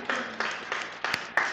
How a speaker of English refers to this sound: If you're here today and you have children, you've done exceptionally well. Well done. I think we can give you an applause for that.